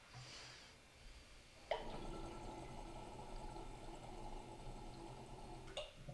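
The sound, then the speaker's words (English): Water rushes and gurgles through a glass piece that moves gallons of water, a steady frothy churning that kicks in sharply after a quiet hiss and runs loud for several seconds before cutting off. “This thing literally moves gallons of water.”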